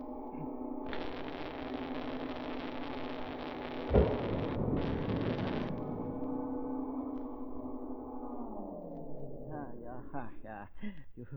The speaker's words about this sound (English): You throw a switch, a lot of sparks fly, a bang like a firecracker.